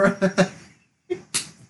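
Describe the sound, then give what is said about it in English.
A few short voiced sounds, then a single sharp, crisp and bright slap of palms meeting in a high five, followed by a faint trailing murmur. “Bad dad joke. Slap five.”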